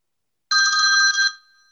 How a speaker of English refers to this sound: Phone rang. There you go.